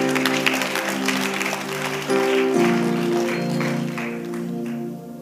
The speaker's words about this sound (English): You can clap for that.